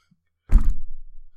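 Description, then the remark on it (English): A single dull, heavy thump of a person's head hitting a table, with a low, resonant body that fades over about a second. No one speaks. “if you heard a thump, that was Michael's head hitting the table”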